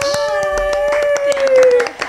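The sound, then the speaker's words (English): A small audience claps in quick, uneven bursts, the sharp claps fairly loud, while a voice holds a long, drawn-out cheer over them. “Also, we have like our first audience. That's why you hear the the extra claps, which is great.”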